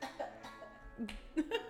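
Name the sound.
cough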